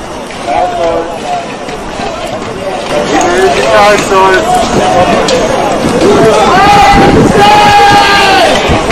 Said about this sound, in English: So now we're out by Frederick. I see a large crowd over here smashing the SUVs.